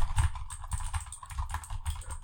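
Rapid, irregular tapping of someone typing out a text message on a phone, a steady run of small clicks lasting a couple of seconds with no voices.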